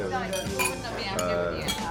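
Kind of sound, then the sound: household object, glasses clinking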